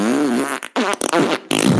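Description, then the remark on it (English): A voice blows wet, sputtering raspberry sounds into the mic, imitating farts in several bursts separated by brief pauses, fairly loud. “And I'm making fart noises into the mic.”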